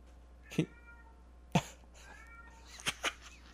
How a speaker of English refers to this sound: Okay, this is our cat, Stripey. I've never heard him meow before until he got sick. And then we took him to the vet. We bring him back. And now... He found his voice.